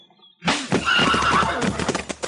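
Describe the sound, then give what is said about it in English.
A horse tied at a crowded hitch rack lets out a loud whinny lasting nearly two seconds after being hit, with hooves clopping and shuffling underneath. “You hit my horse again, I'll shoot you”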